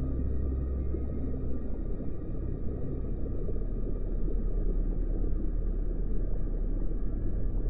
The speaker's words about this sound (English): Leaving emotion behind, hear the bubbles in the background soothe you into the next relaxing seconds of the next few minutes.